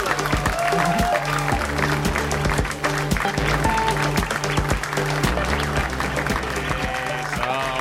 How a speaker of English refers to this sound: Clap it up for Chris.